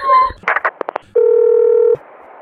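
A quick series of about five short telephone dialing beeps is followed by a steady, fairly loud dial-type tone that holds for under a second before cutting off, with no talking.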